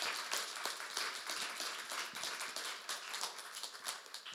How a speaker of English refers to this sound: If you're a Christian, come on, you clap your hands.